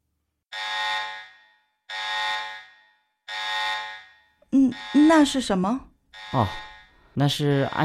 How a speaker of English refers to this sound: So it's about what to do when the safety alarm goes off.